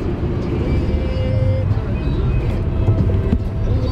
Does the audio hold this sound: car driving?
yes